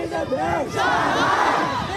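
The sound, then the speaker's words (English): A crowd of protesters in Shanghai shouts and chants together in the street against COVID restrictions and PCR tests, a loud, continuous mass of overlapping voices with rising and falling yells and no single speaker standing out. “Some of those demonstrating have reportedly been shouting, "We don't want PCR tests, we want freedom."”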